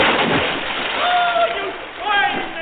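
A loud splash as a person falls into water, followed by churning and sloshing, with a few thin whistling tones cutting through the noise.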